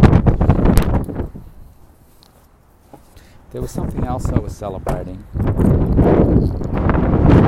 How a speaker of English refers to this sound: I'm going to jump out of the car and head to the gym. So it's a bit windy out there, so I apologise if there's a bit of noise.